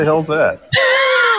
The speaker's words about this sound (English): Oh boy! If that wasn't a sound effect, that was pretty darn good. That's the sound of my screen door.